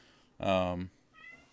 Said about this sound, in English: Yeah. I hear a cat over there. Yeah, he, like, will not make up his mind what he wants. So I keep having to, like, let him in and out, and then I just hear meowing right outside the door, which my mic is probably picking up.